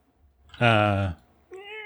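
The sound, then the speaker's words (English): A cat meows twice, a loud drawn-out meow followed after a short pause by a slightly softer, higher-pitched one. “Got a kitty cat here.”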